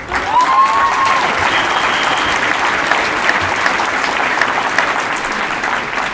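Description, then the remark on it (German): A crowd at a rally on the Schlossplatz in Göppingen claps steadily and loudly for about six seconds for those elected to the youth council, a dense, even wash of many hands with no speech, the applause holding at full strength and easing only slightly near the end. “Einen ganz großen Applaus natürlich nicht nur an uns beide, sondern an alle, die ins Jugendgremium gewählt wurden.”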